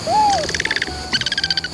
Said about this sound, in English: Solid Scops Owl peers inquisitively at the camera. What a cutie. The next day, there are two having a little chat.